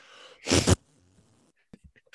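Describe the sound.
A voice blows a single loud, buzzy fart noise lasting about a third of a second, followed by quiet breath and a few faint clicks.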